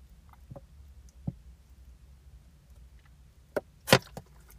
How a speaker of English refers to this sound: Hold on, let me drink some water real quick.